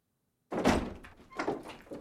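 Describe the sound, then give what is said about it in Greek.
Several solid, loud knocks on a wooden door after a moment of silence, in an uneven rhythm with a brief pause between the first knock and the rest. “Την ώρα εκείνη χτυπάει πόρτα.”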